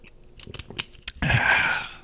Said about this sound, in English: And before I get into that, I need a little swig of water here.